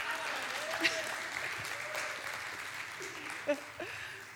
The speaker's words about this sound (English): Yeah, clap.